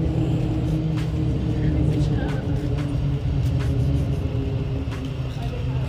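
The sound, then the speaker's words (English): A Thameslink commuter train approaches at high speed and rumbles across a railway bridge overhead, a loud, steady low roar with droning tones and occasional sharp clicks and rattles throughout. “You know, just walking under the railway bridge now, and I can hear the Thames Link coming towards me at high speed, rumbling overhead.”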